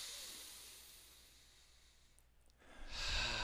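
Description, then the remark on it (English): A slow, deep breath: a long, airy exhale that tapers off, a brief pause, then a louder rushing inhale. No one speaks. “So let's everybody just take a breath.”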